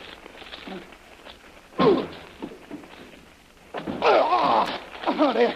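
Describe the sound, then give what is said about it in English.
A heavy thud against a stuck door, then a longer burst of shoving and banging as a person goes back to try forcing it open again, mixed with strained grunting, fairly loud. “I'm going to go back to that door and try it again.”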